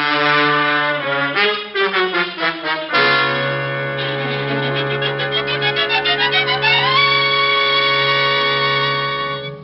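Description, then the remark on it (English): A loud police car siren wails steadily, pulsing and warbling before its pitch climbs higher near the end, with no voices over it. “Yeah, the siren.”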